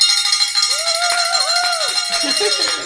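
A hand bell, rung by a religious sister, rings steadily for about three seconds, a rapid, bright metallic jangle of high overlapping tones, while a voice sounds underneath with rising and falling pitch.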